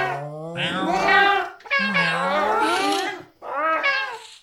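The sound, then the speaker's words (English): A voice imitates cats meowing: three drawn-out, wavering meows in a row, loud, the first two long and the last one shorter, with no other talking. “The cats quietly stampeded towards Mirko, who was coming carefully down the hallway. They quickly surrounded him.”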